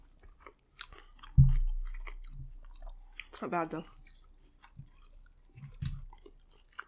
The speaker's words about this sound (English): The chicken is kind of hard to bite into.